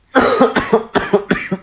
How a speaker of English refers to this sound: I've been going in bursts. So, like, if I cough, like, a few times, like I did just then, I can last maybe 2 minutes, maybe 5 minutes. We'll see. Without coughing. I'm currently holding back.